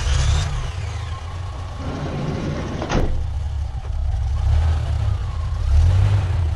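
A 15-passenger church van's engine rumbles low and steady, with a sharp clunk partway through, then revs louder toward the end. No one speaks.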